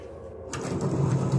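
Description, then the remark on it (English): A heavy coffin lid is slid back into place, a brief thud followed by a low, grinding scrape of wood on wood, fairly loud, with no voices. “He put on the coffin lid again.”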